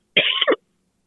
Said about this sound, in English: Excuse me. I keep trying to mute my microphone when I start my coughing.